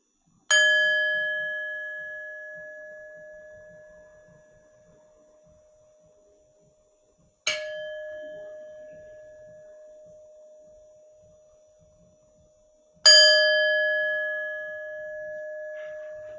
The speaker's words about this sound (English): Allow yourself to sit the next minute in silence. I will ring the bell when we are to come out.